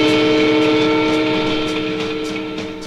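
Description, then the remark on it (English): A train rolls by loudly, its horn holding a steady multi-tone chord over rhythmic clatter of wheels on rails, gradually fading slightly toward the end. No one speaks. “Watch out for the train.”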